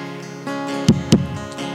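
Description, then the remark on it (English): Two deep bass thumps land close together in a lub-dub heartbeat pattern, loud, over a steady sustained musical drone with no voices. “give me a little doom on the bass. Give me a little bass.”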